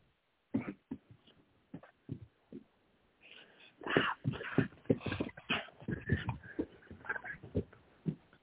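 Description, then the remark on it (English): Dogs run around trying to accost a person, with irregular bursts of scrabbling, snuffling and small grunting noises that grow busier and louder partway through. “Speaking of dogs, it sounds like you're having a thing with your dog.”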